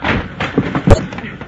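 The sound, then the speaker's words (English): A heavy chamber door is forced open by expanding hexaplast packed against it and bursts open with one sudden, loud thudding bang. Low rumbling and scattered knocks come before the bang, and a fainter rattling tail follows. “Hey, it works, sir. The door's open.”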